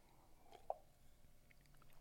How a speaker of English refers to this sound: hold on, another sip of coffee.